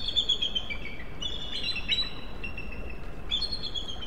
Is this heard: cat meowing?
no